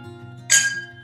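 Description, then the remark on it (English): A single bright, sharp clink of glasses touching in a toast, ringing briefly before fading over a low steady background hum. “Cheers. Wonderful. Good sound.”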